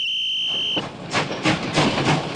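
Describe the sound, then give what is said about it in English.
The Flying Scotsman steam train, bound for Edinburgh, sounds its whistle in a steady high tone for under a second, then gives way to rhythmic bursts of hissing steam and chuffing as the engine pulls away. “And so, after a vigorous debate, I found myself aboard the Flying Scotsman next morning, making passage for Edinburgh.”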